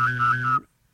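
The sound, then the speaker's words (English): A professional whistler imitates a vibrating cell phone: a buzzy low drone under a higher whistled tone that wobbles twice, lasting about half a second before cutting off into silence. “And I can do also a vibrating cell phone.”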